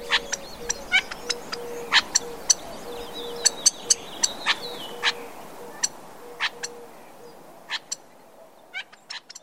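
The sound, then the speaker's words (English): Outdoor birdsong of Gambel's quail with many sharp, short conversational chirps, burrs, buzzy trills and warning calls scattered irregularly, some bright, over a steady background hum with a low repeated tone; no one speaks. “Their little conversational chirps and burrs and trills and their warning calls are just so iconic.”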